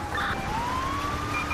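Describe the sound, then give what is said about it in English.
A police car siren wails loudly during a pursuit near West US Route 68, its pitch sweeping slowly upward in one long rise over a steady low rumble of engine and road noise. “We're going to cut the siren here for a second, just kind of follow him.”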